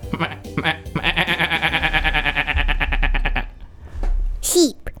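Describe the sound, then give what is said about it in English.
A sheep lets out a long, wavering bleat with a rapid tremolo, loud, followed by a brief higher cry at the end. “Sheep. That was an easy one.”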